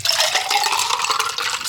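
A drink topped with Mountain Dew Thrashed Apple pours steadily from a pint glass into a metal shaker tin, a continuous bright splashing rush, with no one talking.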